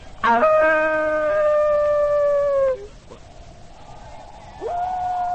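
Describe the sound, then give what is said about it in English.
A human voice imitates a wolf's howl: a long, steady, mid-pitched wail that sags slightly before breaking off, followed after a pause by a second howl rising in pitch. “Why do you speak with the voice of the wolf?”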